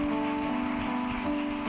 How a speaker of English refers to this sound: Come on, let's give that hand clap to the Lord tonight. Praise his mighty name.